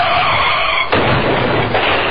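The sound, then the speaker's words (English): Car tires screech in a sustained skid for about a second, then the loud, sudden crash of a car accident bursts in, followed by a second heavy impact and rumbling debris. No voices are heard. “Nobody wants to be in a car accident, but it can happen to even the most careful drivers.”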